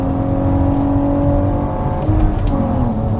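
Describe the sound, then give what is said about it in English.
A six-speed car's engine drones loudly as it overtakes another vehicle, its exhaust note holding a steady throaty hum that rises slightly as it accelerates, with no voices present. “That exhaust sounds good.”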